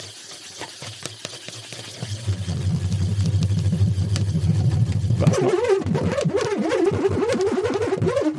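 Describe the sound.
A nut spins inside a swirled balloon: first a low, steady humming drone as the nut slides, then a sudden louder buzzing rattle whose pitch wobbles rapidly up and down as it starts rolling, with a brief spoken remark.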